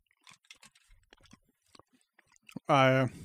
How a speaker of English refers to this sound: I don't like chewing on that kind of stuff, man. Chewing on a jelly bean is like fucking nasty. Make you sick.